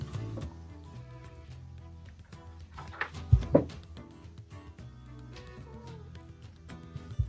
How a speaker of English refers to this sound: Hi, Lil. Our cat is saying hello.